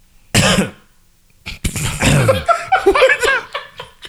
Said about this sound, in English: I started talking. I had to cough, y'all. Cough that nut up. Cough it up, honey. Get her out, honey. Cough it up.